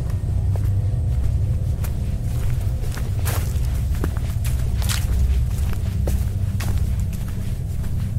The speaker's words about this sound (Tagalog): Patuloy akong nakiramdam hanggang sa may narinig ako na may naglalakad papalapit sa tent ko. Bigla itong mawawala at tatahimik saglit. Tapos, maririnig ko ulit na may naglalakad.